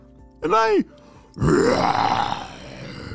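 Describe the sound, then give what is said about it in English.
A person imitates a dinosaur roar with their voice: a short rising-and-falling vocal growl, a brief pause, then a longer, loud, raspy roar that gradually tails off. “And I can roar! Somehow, Fluffy the chicken had turned into a real dinosaur.”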